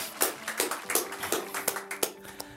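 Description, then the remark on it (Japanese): A church audience claps together for Jesus in a steady rhythm, about seven sharp, even claps, with a faint sustained tone humming underneath and no voices. “今教会みんなでイエスに大きな拍手してこうよ。”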